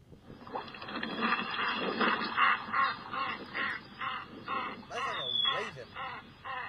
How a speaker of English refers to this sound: You want to hear the canvas back? Sure. Let's go to look at that canvas back.